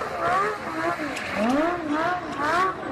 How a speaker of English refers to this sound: And the UK's National Crime Agency? It's even released a video about him that opens with a shot of Yakubets driving his Lamborghini around a public square in Moscow.